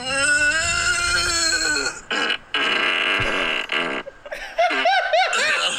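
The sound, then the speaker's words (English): A long, loud, buzzy recorded fart with a droning tone and rough sputtering stretches, followed by wavering groans of pain. “I like the moans of pain.”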